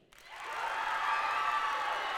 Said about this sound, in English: So you came up first. I want to hear your applause. Tower A.